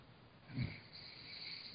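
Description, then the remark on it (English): A single heavy, snorting breath like a sleeper's snore rises briefly out of a quiet background hiss, sounding faint, with no talking. “Do you hear that breathing?”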